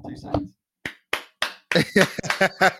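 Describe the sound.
A single person claps several times, sharp claps spaced out at first, then faster. A brief voice comes just before, and talking seems to overlap the later claps.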